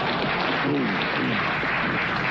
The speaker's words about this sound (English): Why are they clapping?